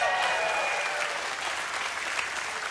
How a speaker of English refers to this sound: And that's why I wrote a book that recently released. This is your cue to cheer. It's called Dangerous Prayers.